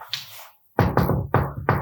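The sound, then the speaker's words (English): Four loud knocks or bangs land in a quick, slightly uneven series, each a sharp thud with a short ring, preceded by a faint rustle and a brief silence. “And we hear some bangs and some knocks.”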